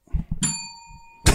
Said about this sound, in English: Oh, we got two bells now. Okay, we got two bells, boys.